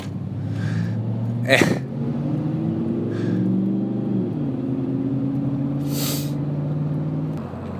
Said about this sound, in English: Oh, here's the car that just roared by me earlier. This guy's got issues.